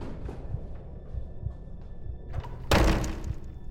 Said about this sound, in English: Bursting open the wooden door to this front attic room